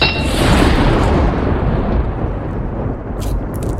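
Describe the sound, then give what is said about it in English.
A knight slams a blood-stained sword into the stonework at a bridge with a loud, heavy crash that rolls into a long rumbling decay, with a few faint crackles near the end and no voices. “And with that, the knight slammed the sword into the stonework.”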